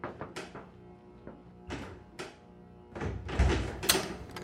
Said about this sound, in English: Shit, get that open! Dak, for God's sake, you're swaying. Get the door open!